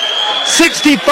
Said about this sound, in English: 65-65, 33 seconds left. Nora, deafening crowd.